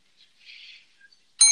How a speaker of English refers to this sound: And Grifka, before you respond, I got a little something for you. The Grifka Bell is back.